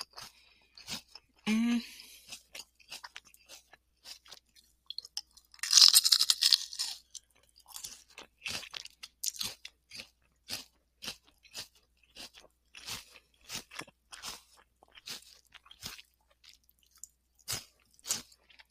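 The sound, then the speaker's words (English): Crisp crunching as a small snack is bitten into, then a long run of steady, rhythmic chewing, a string of sharp dry crackles that stay fairly loud throughout. “Watch, this one's not going to be that crunchy because this is a baby one.”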